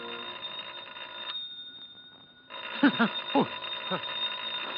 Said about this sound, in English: It's not the door, it's the phone. Oh, the phone. Yes. Who the devil can that be?